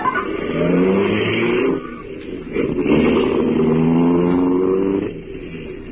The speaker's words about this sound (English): Slammed the door shut, got in alongside of me. And we drove off.